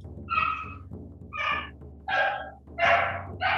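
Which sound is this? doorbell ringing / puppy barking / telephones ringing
puppy barking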